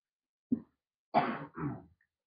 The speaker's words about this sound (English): Give me 2 seconds. I really don't want, I have to cough so bad. Cover that.